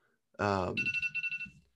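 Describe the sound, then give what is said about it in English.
A phone's wake-up alarm rings with a bright, high electronic tone pulsing in quick, even bursts, loud and steady, right after a short, buzzy low-pitched sound at the start. “It's my alarm to wake up to podcast.”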